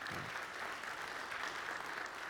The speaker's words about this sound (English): Amen, amen. Give God a hand and clap, amen.